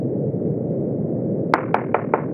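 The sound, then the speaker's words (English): Aboard an airplane in flight, a steady engine-like drone fills the background, then five quick, sharp knocks land on a cabin door in an even rhythm, distinct over the hum. “We'll hold somebody at the cabin door.”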